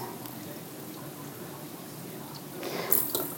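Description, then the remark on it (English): One and a half cups of water pour steadily into a bowl of rice, a soft continuous splashing hiss that swells louder near the end, with a faint clink as the pour finishes. “So I'm coming over here and I am going to get 1 1/2 cups of this special water that we have here. And I'm putting it in the bowl with the rice.”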